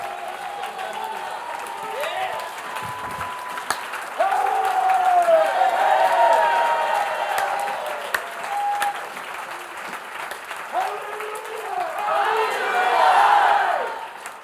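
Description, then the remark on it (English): A church crowd, risen to its feet, bursts into sustained applause for the Lord Jesus, dense clapping mixed with cheers and whoops, swelling loudly around the middle and again near the end before tapering off. “Give the Lord Jesus the biggest hand clap that you've ever given anybody.”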